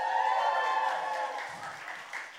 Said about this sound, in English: You know it. Well done. That's a good cheer. Good omens for a hot evening.